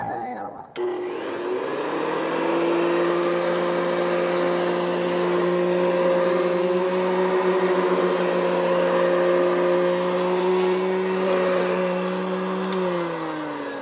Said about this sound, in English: sounds like somebody took out the vacuum cleaner.